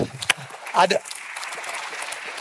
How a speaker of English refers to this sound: This past year, us give a hand clap to the Lord for baptisms.